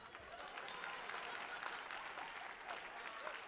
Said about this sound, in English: Clap your hands, come on, clap.